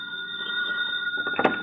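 telephone ringing

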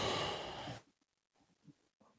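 coughing

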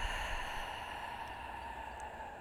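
long slow exhale

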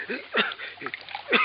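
water being poured

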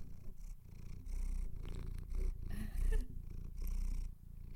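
cat purring loudly

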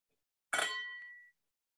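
glasses clinking

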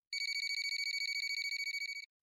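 telephone ringing

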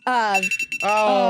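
phone alarm ringing

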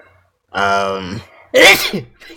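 sneeze

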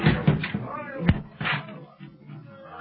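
door being broken down

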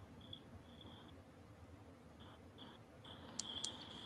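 crickets chirping at night

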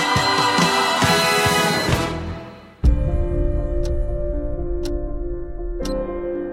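clock ticking

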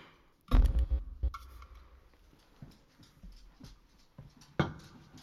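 dog whimpering and panting

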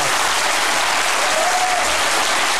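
big audience applause

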